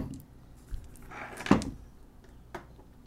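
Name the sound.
dice rolling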